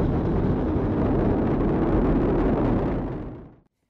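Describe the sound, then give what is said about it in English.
A massive, steady roar of the core stage engines and two solid rocket boosters at the liftoff of Artemis 1, propelling the vehicle at 128 miles per hour. Dense crackling rumble heavy in the low end, holding loud and unbroken before fading off abruptly near the end. “Engines on the core stage and two solid rocket boosters now propelling the vehicle at 128 miles per hour.”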